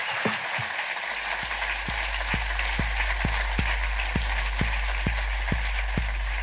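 Steady audience applause, a dense wash of many hands clapping with no speech, accompanied by a regular low thumping beat that pulses roughly three times per second throughout.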